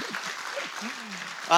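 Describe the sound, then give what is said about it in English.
An audience claps steadily in a dense, crackling wash of many hands, with voices murmuring underneath, and the applause swells louder right at the end. “Can we just get a full clap?”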